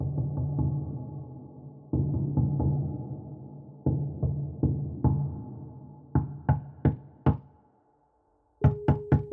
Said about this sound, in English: Rhythmic thumps on the door echoed my pounding skull.